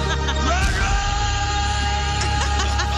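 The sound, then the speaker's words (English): A man gives a loud, sustained bellowing yell imitating the mountain-climb scene from Rocky IV, straining and wavering in pitch for about three seconds over a dense, noisy background. “That's a Rocky IV mountain climb.”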